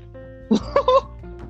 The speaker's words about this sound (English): I'm gonna go cough.